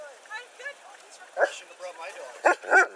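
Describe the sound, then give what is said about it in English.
A dog barks three times in short, sharp bursts, fairly loud, among protesters going to Ottawa to protest, with a murmur of voices running underneath between the barks. “Even the dogs have had enough.”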